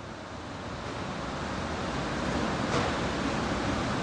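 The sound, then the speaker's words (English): A steady, distant machine hum from a huge 30-foot-long conveyor dishwasher in a cavernous dish room, a broad rushing drone that swells slightly louder toward the end, with one brief clink partway through and no voices. “Then, I heard a familiar hum in the distance.”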